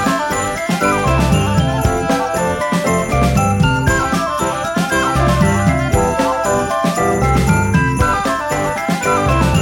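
A cheerful, upbeat Christmas song plays steadily and loudly, bright jingling bells ringing over layered instruments and a bouncy, regular beat, with no talking over it.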